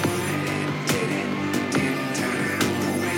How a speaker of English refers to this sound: Cool guitar riff right there, though. Spooky electro goth is my favorite genre. You can hear that high peeling screech sound there.